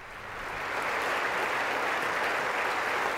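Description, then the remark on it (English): Sustained applause from a large crowd in the House chamber, a dense wash of many hands clapping that swells in the first second and then holds steady and loud throughout, with no voices standing out. “Don't clap for him.”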